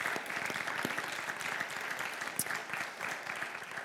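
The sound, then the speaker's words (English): An audience applauds steadily for core team members standing up, a dense, even wash of many hands clapping at a moderate level with a few sharper individual claps standing out. “So let's give these people a round of applause, yeah.”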